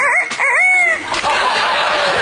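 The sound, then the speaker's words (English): A voice imitates a rooster's crow, a loud warbling cock-a-doodle-doo with rising and falling pitch, followed by a noisier, breathy tail. “How about a rooster?”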